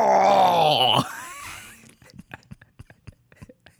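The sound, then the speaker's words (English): A voice mimics a healthcare provider's pained coughing fit: a loud, wavering groan lasting about a second, then a quick, uneven string of short, breathy hacking bursts that grow softer. “Like, the coughs are punches to his stomach.”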